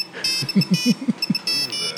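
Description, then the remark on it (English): A ringtone taken from YouTube plays on a mother's old cell phone from the early 2000s: bright, buzzy electronic tones in repeating bursts, high-pitched and steady, while a low voice talks briefly underneath. “That ringtone's from YouTube, though.”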